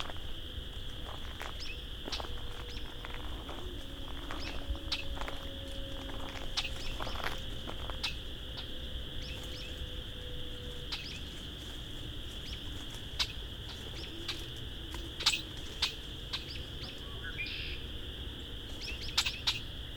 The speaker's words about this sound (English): couple of red-winged blackbirds right in front of me. A patch of phragmites.